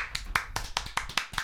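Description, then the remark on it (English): Brief clapping as a round of applause for Steph: about seven sharp, evenly spaced claps in quick succession, moderately loud, with no voices over them. “Let's give Steph a round of applause.”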